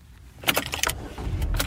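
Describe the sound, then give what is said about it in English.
Keys jangle in a series of bright metallic bursts inside a car on a Monday morning, followed by a low rumble as the engine seems to start before driving out to Fort Benning, an army base in Georgia, with no one speaking. “I'm sitting in the car. I am about to drive out to Fort Benning.”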